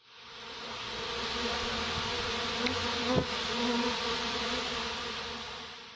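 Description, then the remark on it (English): A steady, dense buzzing of bees or a swarm fills the whole six seconds at even loudness, with a brief sharper click near the middle. No voices are present. “All right, that sound means it's time for our community buzz, where we take a look at what the fans are talking about.”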